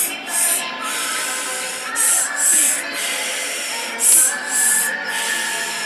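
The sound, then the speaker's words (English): Short, forceful breathy bursts of airy hiss during a guided breathing exercise (inhale, inhale, blow), mostly in pairs, repeating about three times over a steady low background hum, with no talking. “Inhale, inhale, blow.”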